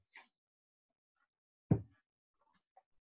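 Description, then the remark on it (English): A single dull, heavy knock on a door, fairly loud, preceded by a brief higher-pitched scrape and followed by a few faint clicks; no one speaks. “Door.”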